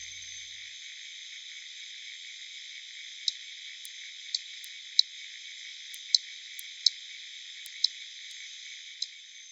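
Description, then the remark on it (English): Harbour porpoise echolocation clicks, ultrasonic in real time, slowed down 32 times to make them audible, with band stop filters applied to remove background noise; recording shared by the Hebridean Whale and Dolphin Trust: about eight sharp, brief clicks at irregular intervals, standing out over a steady, high-pitched hiss with no voices. “That recording has been slowed down 32 times to make the clicks audible because they're ultrasonic when listening in real time.”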